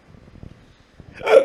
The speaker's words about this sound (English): I'm burping.